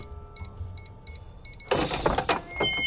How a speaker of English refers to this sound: Thank goodness we have this secret dog gate that lets us run free.